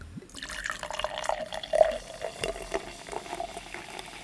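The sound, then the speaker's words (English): Cola pours steadily into a glass for a few seconds, a continuous splashing gurgle with a faint fizzy hiss and no voices. “Pouring some.”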